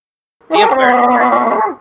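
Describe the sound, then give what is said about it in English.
A person's voice imitates a Wookiee call, made through the nose: one loud, sustained, growling roar with a strained, nasal edge, lasting just over a second and then cutting off, with no other sound around it. “That was my stepping on a duck made Wookiee call.”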